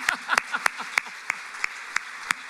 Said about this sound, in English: That was spectacular. Oh, we have to clap again, because we can.